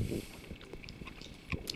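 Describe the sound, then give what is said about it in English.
Someone chewing pumpkin caramel: soft, sticky smacking and wet mouth clicks in an irregular rhythm, fairly quiet, with a low rumble early on and no one speaking. “Sorry, folks, we're chewing on caramel.”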